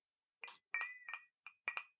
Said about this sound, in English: Yes, and I've just poured it out. I don't know whether you're supposed to take it over ice, but I have. Ah, that's the clinking sound I'm hearing.